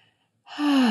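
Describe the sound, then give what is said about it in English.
A deep breath drawn in through the nose, starting after a brief silence and swelling into a loud, airy inhalation that fills the last half second. “And breathing in, calm.”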